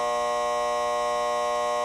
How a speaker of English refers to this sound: So that buzzer means that is all the time we have for segment number 1.